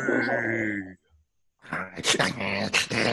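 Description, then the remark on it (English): A person imitates a dog, starting with a drawn-out whining howl, pausing briefly, then breaking into rough, raspy growls and snarls. “You're welcome to the dog pack now, and we're going to take you down this Sunday, Sunday, Sunday.”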